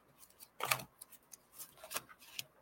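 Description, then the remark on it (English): A deck of oracle cards being shuffled, with a few crisp papery riffles and soft flicks spread out unevenly. Fairly quiet, with no one talking. “Let's see if I can shuffle these without dumping them all over the floor.”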